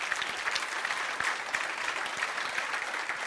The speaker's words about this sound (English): And how many in this room, with a show of the right hand, God came through for you? That's every single one of us. I'll wait while you clap your hands right there.